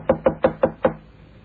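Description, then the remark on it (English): Five firm knocks rap on a wooden hotel room door, room 1234, in a quick, steady rhythm, distinct, followed by a quiet pause with no voices. “Knock again.”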